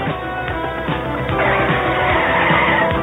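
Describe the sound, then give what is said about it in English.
Car tires skid loudly in a car wreck with a harsh, grinding screech that runs for a few seconds and swells toward the end, thick with rough mechanical noise and no voices. “You caused a car wreck that killed her”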